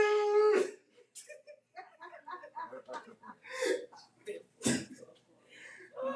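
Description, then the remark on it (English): A person briefly imitates a whimpering, howling dog with a high, drawn-out whine at the start, followed by animated talking and short vocal bursts. “And then you start looking at the dog.”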